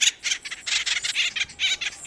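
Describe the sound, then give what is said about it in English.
Acorn woodpecker calls: a rapid, raucous run of harsh, scratchy squawks repeating in quick bursts, loud, with no voices. “The cartoon Woody was an imp, but the acorn woodpecker is an industrious bird.”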